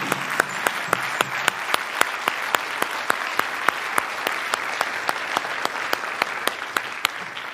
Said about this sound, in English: Let's give them an applause for their labor.